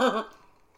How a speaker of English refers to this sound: So, sorry, taking a sloppy sippy sip here of the vodka drink. That was pretty sloppy.